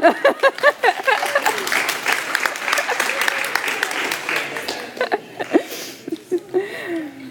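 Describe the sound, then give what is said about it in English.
An audience claps during a communion service after a dropped loaf of bread is caught, a dense burst of applause lasting several seconds, with scattered laughter mixed in before the clapping thins out into a few last claps and murmurs. “Go ahead, clap.”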